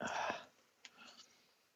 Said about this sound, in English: Exactly. I hear those gasps every single time I say something like that. And who was that gasped for me? That may have been me. I gasped.